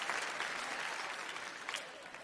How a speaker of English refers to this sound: I got to be honest, you're going to regret clapping that loud for her retirement because I am going to talk about that today.